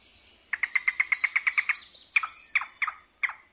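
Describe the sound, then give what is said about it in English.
A recording from the Audubon Society, played by field researchers, of a yellow-billed cuckoo calling alone: a fast, clear run of about ten wooden knocking notes, then a few slower, drawn-out notes, over a steady high insect hum. “To verify that was what Celia heard, field researchers played this recording from the Audubon Society.”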